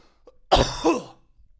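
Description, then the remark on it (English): A single loud, harsh cough from a person coughing hard directly into a microphone, with a rough follow-through, then fades back to near silence. “Can you cough so hard that it goes through my mic clearly?”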